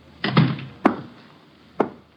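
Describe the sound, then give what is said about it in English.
A door is pushed shut: a rattling, heavy thump followed by two separate sharp wooden knocks, each fading quickly, with no voices. “Shut the door, Chuck.”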